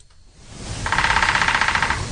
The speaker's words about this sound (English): Woodpeckers.